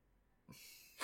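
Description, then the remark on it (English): A stuffy, congested sniffle from someone who is sick: a soft airy nasal intake that builds into a sharper, louder snuffling sniff at the end, with no talking. “And the I'm sick sniffles.”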